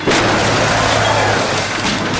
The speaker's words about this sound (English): It's the Pope-mobile! Pope Hilder's Pope-mobile has crashed through the wall!